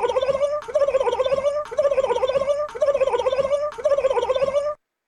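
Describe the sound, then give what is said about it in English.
A turkey gobbles five times in quick succession, each call a loud, rapid warbling burst with barely a pause between them, with no voices. “And instead of shooting bullets, they're going to be shooting turkeys.”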